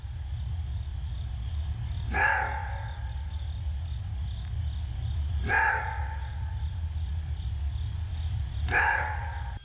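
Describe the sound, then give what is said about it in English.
A maned wolf, a wild canid that is neither a dog nor a fox, gives three deep, hoarse barks, each a single burst about three seconds apart, over a steady hum of insects and low background noise. “That is not a dog, and it is not a fox. That is an animal called a maned wolf.”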